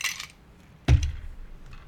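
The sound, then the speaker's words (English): Ice cubes are dropped into a glass holding a cocktail of syrup and Fruit Loop vodka: a short bright rattle at first, then a sharp, heavy clunk and clatter that trails off into a few faint clinks. No one speaks. “Just added ice to our glass, give it a stir.”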